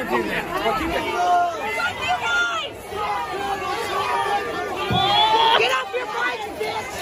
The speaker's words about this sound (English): Now, if you can't tell, they're yelling at the cops here who are trying to put out this fire, which is, I guess, a fire of MAGA hats.